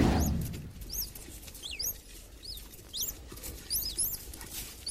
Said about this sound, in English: Oh, hang on. I know that squeak. I'd know that anywhere. That is a naked mole rat. It is. It's a legend.